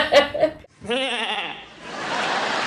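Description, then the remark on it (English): A person imitates a goat with a single loud, quavering bleat lasting about half a second. Brief voiced sounds come just before it, and a broad noisy wash follows. “He didn't get to make any goat sounds or.”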